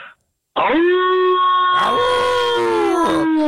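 A wolf lets out one long, loud howl that starts abruptly and holds a steady, slightly wavering pitch for about three seconds, sounding clear.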